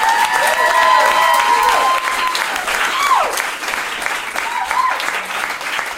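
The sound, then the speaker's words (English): An audience applauds participants who came up to take part, steadily and loudly for several seconds, a dense wash of clapping with a few shrill whistles and whoops rising and falling above it. “Let's give them a round of applause for coming up.”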